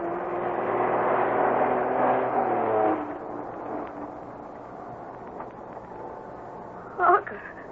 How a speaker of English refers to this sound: Bobby and Harker have spotted a slow-moving truck coming down the narrow road from the mine